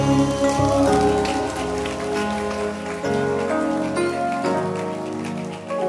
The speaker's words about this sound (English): Oh, come on, your hand clap can be better.